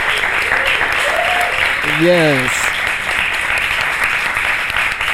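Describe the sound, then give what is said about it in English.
A live audience claps steadily throughout for the panelists at the end of a live panel, a dense, even wash of applause at full volume, while a single voice briefly calls out over it partway through. “Please give our panelists a round of applause.”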